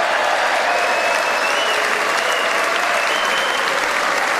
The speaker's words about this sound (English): He gets a standing ovation here too, but Nancy Pelosi still does not clap.